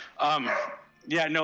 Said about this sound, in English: Sorry, dogs keep barking.